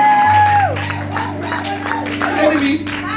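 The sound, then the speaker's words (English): A church audience claps and cheers over a steady hum of music, the dense, uneven applause running throughout with scattered whoops and a brief high whistle-like tone rising above the crowd. “Over this church, clap hands for the guy.”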